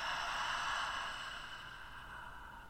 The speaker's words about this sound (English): let's just take a big, deep breath, bringing that breath into the physical body. Holding on to it for a moment, and then exhaling out.